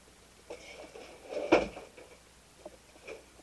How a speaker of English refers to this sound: Studio door over here.